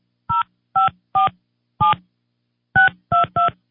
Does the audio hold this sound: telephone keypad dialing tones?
yes